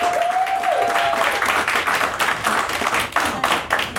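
A crowd at a live show applauds steadily to welcome the guest, dense overlapping claps filling the whole stretch at a loud, even level, with a brief whistle-like tone near the start.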